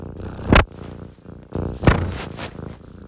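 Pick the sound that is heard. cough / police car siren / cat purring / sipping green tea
cat purring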